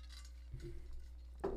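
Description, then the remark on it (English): A single brief clink of glasses touched together once in a toast in a studio near the end, a short bright ring heard fairly softly over a low steady hum with no talking. “Okay, do you want to cheers? Oh, cheers, absolutely. Cheers. Cheers, salud.”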